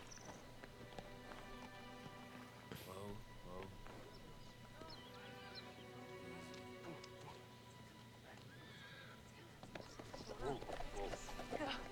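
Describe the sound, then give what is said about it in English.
A horse's hooves clip-clop in a steady, quick rhythm, mixed with a busy background of voices and other sounds that partly cover them. “Dang, horses can just stop like that?”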